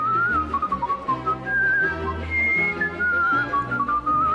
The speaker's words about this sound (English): Like it sounds a little like double tonguing on flute. And he is exhaling and then inhaling. He's doing an inward whistle really, really quickly on like a 16th note to just get that very quick bounce.